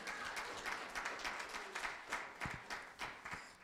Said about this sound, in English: All right, now let's give a hand clap to the one who deserves it, Jesus, this morning, amen.